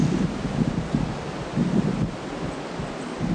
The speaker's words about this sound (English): Hang on, wait one second. I'm gonna stick the microphone out the door and see if the wind works.